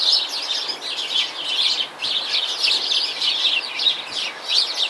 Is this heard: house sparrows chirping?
yes